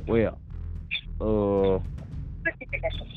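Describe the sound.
A voice over a phone line keeps cutting in and out, arriving in short, choppy fragments separated by dropouts and brief crackly bursts.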